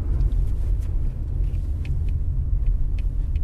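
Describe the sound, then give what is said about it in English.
A car's engine hums steadily with heavy low road rumble as it drives off on a road in Italy, heard from inside the cabin, with a few faint high ticks and clicks over the drone; the driver has just engaged drive and released the parking brake. “I've been given the driving seat, engaged drive, released the parking brake, and trying to remember which side of the road to drive on in Italy.”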